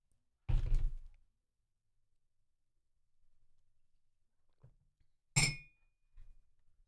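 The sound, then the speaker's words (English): Glasses clink together in a toast, one bright chime with a brief ringing tail, preceded a few seconds earlier by a duller thud of something set down, with quiet background in between. “Cheers. Thanks for doing this.”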